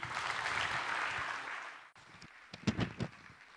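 A crowd applauds a leader of the Immeasurably More team being invited up to speak, with dense, sustained clapping for about two seconds, then the clapping thins out into a few scattered, sharper claps before fading.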